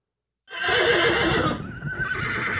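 horse whinnying

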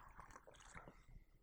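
sipping tea

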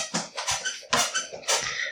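squeaky chair creaking

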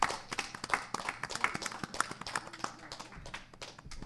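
round of applause

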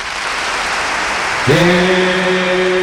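audience applause

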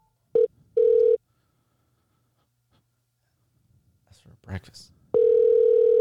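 telephone ringing

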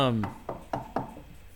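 knocking on wood

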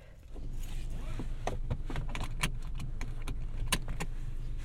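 car keys jangling

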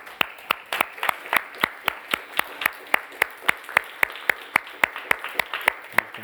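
audience applauding

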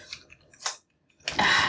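typing on a keyboard

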